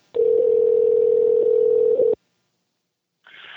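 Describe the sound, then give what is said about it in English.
A steady, loud telephone dial tone drones for about two seconds as a phone call is placed, then cuts off abruptly into silence before a faint hiss begins near the end; no one speaks. “Let's see if we can get a hold of him for the first time today.”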